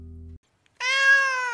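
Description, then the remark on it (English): A single drawn-out, high-pitched meow from a kitten named Dipper, fairly loud, following a short low buzzing tone and a brief pause. “Once upon a time, there was a kitten named Dipper.”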